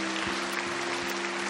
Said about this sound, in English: You know, something I never did when I pastored here, and I regret it, is you guys clapping and cheering and rejoicing, because there's rejoicing going on in heaven right now because of this person making this decision.